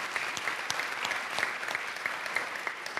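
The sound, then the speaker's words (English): Steady audience applause with many overlapping hand claps forming a continuous, bright patter at moderate loudness, with no one speaking. The applause is for the students who spoke, at a San Diego Unified School District event. “Let's give a round of applause to the students' voices we heard.”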